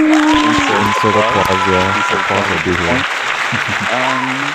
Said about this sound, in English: Hey, everybody, let's give a round of applause.